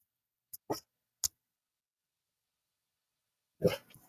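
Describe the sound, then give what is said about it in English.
A male pet dog barks in short, sharp bursts: a few quick yaps close together, a pause, then a louder, longer bark with some trailing noise. No one speaks. “My dog is losing his mind.”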